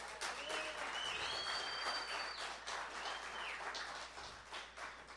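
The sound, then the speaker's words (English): A church audience applauds the ushers, clapping steadily for about five seconds in a dense, continuous wash of applause at a fairly loud level, with a few faint whistles rising above it. “you have these guys trained well because they didn't even clap for themselves.”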